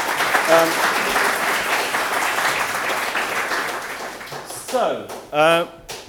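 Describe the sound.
A room full of people claps steadily for several seconds, a dense, even patter of applause that fades as a man's voice starts speaking near the end.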